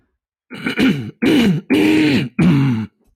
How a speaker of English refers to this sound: That was a good one. Probably won't have to clear my throat for the rest of the show now.